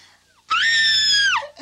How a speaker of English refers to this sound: And then, you know, in a few seconds, you just hear one big loud scream, which you can hear a clip of right here.